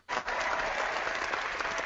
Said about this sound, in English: I think we need to give him a big round of applause here.